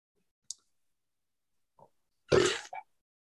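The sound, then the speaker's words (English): A single short, loud burp, lasting under half a second with a brief gurgling tail, preceded by a sharp click and a faint soft noise in otherwise quiet surroundings. “That was me burping.”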